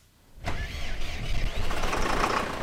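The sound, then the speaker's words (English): A heavy tractor engine cranks and catches after a brief quiet moment, then settles into a steady, loud rumbling idle with a rough mechanical clatter, as a farmer checks the tractor on his wheat, corn and beet farm in the Polish village of Kojenice, 9 miles from the Ukrainian border. “checks a tractor on the farm where he grows wheat, corn, and beets in the Polish village of Kojenice, just 9 miles from the Ukrainian border.”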